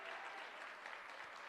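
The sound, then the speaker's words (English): An audience claps their hands together in a steady, dense wash of applause, many hands overlapping continuously with no pauses, as they are urged to clap louder while they believe. “No, just clap a little louder and shout like, Father, help me believe this.”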